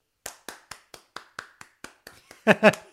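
A steady run of about ten crisp hand claps, evenly spaced and moderately loud, followed by two louder, fuller bursts that sound partly voiced.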